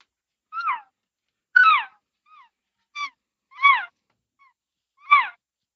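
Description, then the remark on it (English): Imitated calf and cow calls: five short, high, squealing mews that slide downward in pitch, spaced about a second apart, with a few faint chirps in between and no talking. “So I start off with calf and cow sounds.”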